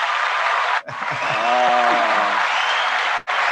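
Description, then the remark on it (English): A steady round of applause during a live broadcast fills the whole stretch, a dense even wash of hand claps, with a brief voiced call rising over it partway through. “And then a round of applause because we're live.”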